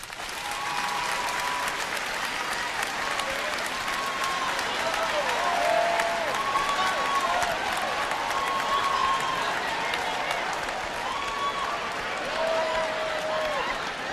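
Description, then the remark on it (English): A large audience, asked to clap if they think they would go to heaven, applauds steadily for about fourteen seconds, dense clapping at a constant loud level, with a few faint whistles or shouts rising above the crowd noise. “By round of applause, how many of y'all think if the world were to end right now, clap if you think you'd go to heaven?”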